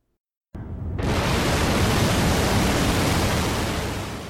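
After a brief silence, a deep, full-bodied roar swells in and holds steady and loud, a dense wall of rumbling engine noise from the massive N-1 rocket at launch, easing slightly at the very end.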